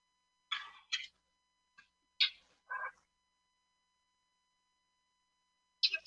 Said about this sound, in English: Oh, I guess they didn't bleep blurp it, but you heard, like, the sound, the rhythmic clicking and the beeping.